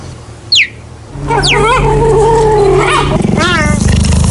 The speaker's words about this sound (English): I think the kind of growly bit at the end gives it away, because other than that, it sounds like a bird. Put you out of your misery. Cheetahs! The sound of cheetahs at Photo Wildlife Park.